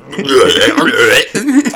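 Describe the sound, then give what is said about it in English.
A long, loud, croaky burp stretching over a second, followed by a shorter gurgling tail. “The mic can't pick up my burps.”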